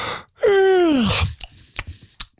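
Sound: imitated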